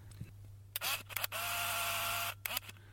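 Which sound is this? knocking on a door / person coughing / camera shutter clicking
camera shutter clicking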